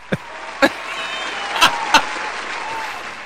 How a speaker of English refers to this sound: Yay! And there should be some clapping with it.